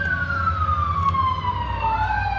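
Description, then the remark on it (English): A fire truck siren wails steadily, its pitch sliding slowly downward as it passes, loud over a low engine rumble, with a new rising sweep starting at the end. “Five giant fire trucks, and the cat will be up the bush, not even a tree.”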